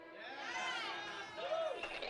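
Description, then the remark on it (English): A crowd cheers and hollers in a steady, dense wash of many overlapping voices for about two seconds, with one rising-and-falling shout standing out near the end. “Everybody's cheering.”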